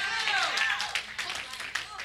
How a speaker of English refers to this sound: Yes, baby. She clapping. Yes, baby. Babies even know.